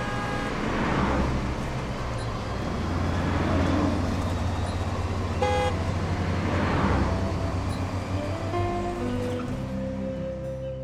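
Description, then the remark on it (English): Steady roar of busy road traffic, with several cars swelling past in waves. A short horn toot sounds midway, followed by longer, overlapping honks toward the end. No one speaks. “They tried to pass tractor, but the road was too busy.”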